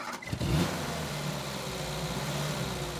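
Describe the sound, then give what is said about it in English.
A car engine starts with a brief burst, then revs and accelerates into a steady, droning hum with a low rumble and a broad wash of road noise as the car leaves Lake Alice and gets back on the road, heading north on State Highway 3, with no one speaking. “Let's leave Lake Alice for now and get back on the road.”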